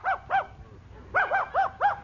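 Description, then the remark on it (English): A dog brought into a courtroom during a custody hearing barks twice, falls quiet briefly, then lets out four quick barks in a row. The barks are clear, with no talking. “Bailiff, have the dog brought in.”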